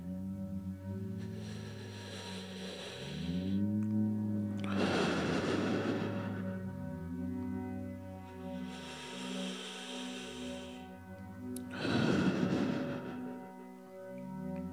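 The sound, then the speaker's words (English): Slow, deep breaths, two full cycles of a softer airy inhale followed by a louder, rushing exhale, over a sustained droning musical tone. “I'm going to start with breathing.”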